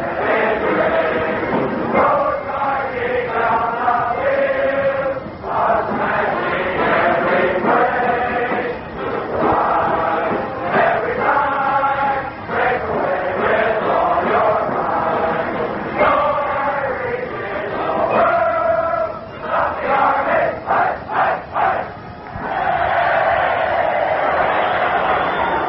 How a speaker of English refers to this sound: Time has been called with a minute and a half remaining in the first half of the football game. The cadets start to sing, the band starts to play, and we start to listen.